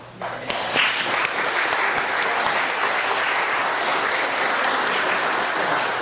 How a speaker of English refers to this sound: I would like to give a round of applause now.